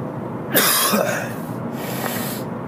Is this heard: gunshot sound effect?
no